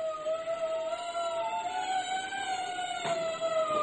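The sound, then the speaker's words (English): A steady wailing siren holds a long, slowly rising tone with bright overtones, loud and continuous over a faint background hiss, with no one speaking. “When I first heard the wailing sirens, I thought, accident, fire.”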